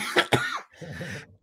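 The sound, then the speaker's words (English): Two sharp coughs in quick succession, followed by a raspy, wheezing throat-clearing sound that trails off. No talking. “This cough's catching up with me”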